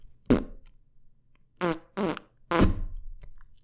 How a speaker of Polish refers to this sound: I jak chodzi, czujecie taką aurę bijącą z jego osoby, która znika w momencie, kiedy jego spodnie wybrzuszają się na tyle i pierd rozchodzi się po pomieszczeniu.